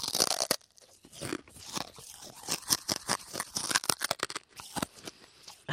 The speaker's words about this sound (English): The entire light bulb is now in …'s mouth. And he's crunching on it.